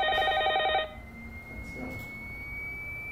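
telephone ringing

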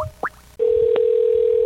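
telephone dial tone

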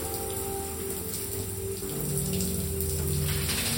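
shower water running

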